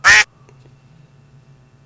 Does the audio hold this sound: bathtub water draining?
no